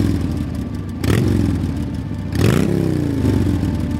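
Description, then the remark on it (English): A motorcycle engine rumbles and is revved twice in quick bursts while the motorcycle is being worked on, the pitch rising and falling each time, with some metallic tool clattering mixed in. No one speaks. “He spent most of his time surfing and skating and, of course, working on his motorcycle.”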